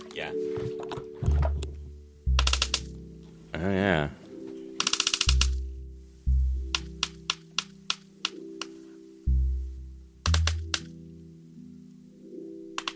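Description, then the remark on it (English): Sperm whale coda clicks through a hydrophone, from a pregnant sperm whale that seems very close to the boat: sharp, dry clicks in short irregular bursts over a low hum, with a person briefly murmuring in between. “almost like Morse code. Each clan of whales shares its own unique dialect of codas”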